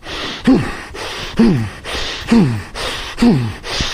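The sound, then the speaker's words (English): Four forceful, sharp exhalations at a steady rhythm, each a short huffing breath with a slight voiced grunt, fairly loud, breathing out hard while throwing controlled punches in a demonstration. “So I'm breathing through and I'm exerting force when I'm doing it, okay?”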